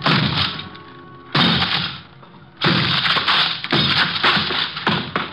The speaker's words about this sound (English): Four smashes and three torn ligaments later, the thin door collapsed over the desk, blocking it.